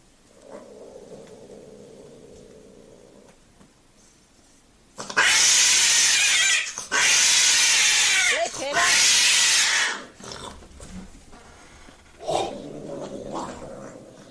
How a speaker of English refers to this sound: Oh, flipping heck! That's two cats just having sex on the bed.